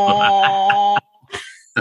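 A deep, buzzy, oboe-like drone representing the sun in a kindergarten-level presentation where each planet has its own sound holds steady for about a second with a faint pulsing flutter, rather like a fart, then cuts off, followed by a couple of brief breathy noises.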